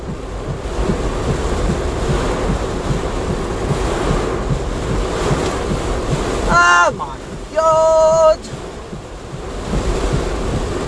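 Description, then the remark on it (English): Heavy rain and gusting wind roar steadily and loudly throughout while someone drives a car on a road, a dense unbroken wash of noise, interrupted near the end by two short, high tonal blasts. “It's raining men and fucking water!”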